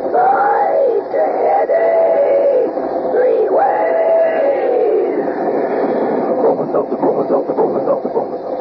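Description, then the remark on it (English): A loud, continuous 'talking train' sound effect with chugging that is shaped into a voice-like chant. It starts in drawn-out, moaning syllables and then quickens into a steady rhythmic chugging. “While we're waiting for Ellery to tell us something about next week's mystery, come on there, swing aboard our famous talking train.”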